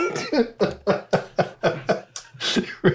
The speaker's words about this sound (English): The fuzz itself, I'm burping, sorry. Oh my gosh. It's happening. It's happening.